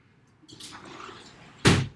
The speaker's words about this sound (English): oh my God, I'm going to close that door because this is obnoxious.